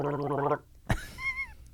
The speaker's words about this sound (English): You okay? Yeah, I just had to gargle.